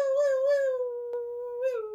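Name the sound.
voice imitating a siren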